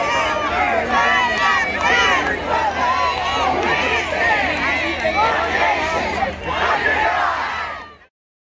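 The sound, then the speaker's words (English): A large crowd shouts and cheers continuously, many voices overlapping into a loud, dense roar that holds steady for about eight seconds before cutting off abruptly. “The crowd is big, ready to go.”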